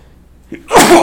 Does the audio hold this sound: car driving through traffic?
no